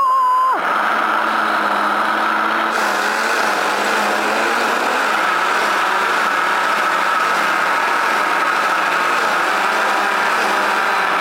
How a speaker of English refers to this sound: All right, so we're gonna blend that up. Here we go. Me and my blender.